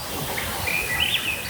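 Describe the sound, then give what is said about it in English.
Thrush song rises in clear, whistled phrases that slide and flutter, steady over a soft outdoor hush, with no one speaking. “Serve your spruce tip jelly on buttered toast and you've got breakfast on one of those mornings when you're up with the thrushes.”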